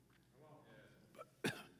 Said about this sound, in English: You cough. Oh, she's got it. They've got it.